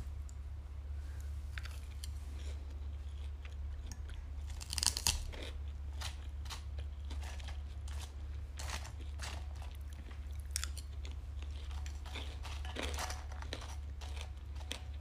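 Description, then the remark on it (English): Steady chewing of crunchy herbed potato wedges with goat cheese, with sharp crunches repeating every fraction of a second over a low constant hum and no talking. “Oh my goodness, I just had a thought and then it went away while I was chewing.”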